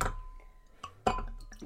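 Wine produced in Trento, Italy, 11.5% alcohol by volume, is poured into a glass, a soft, uneven gurgle and splash with a faint glassy clink, quiet and without any talking.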